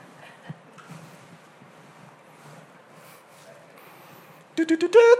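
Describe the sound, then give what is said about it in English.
After a stretch of quiet, low background rumble, a car horn suddenly blares: three quick, loud honks followed by a longer held blast with a bright, brassy tone. “Just a car.”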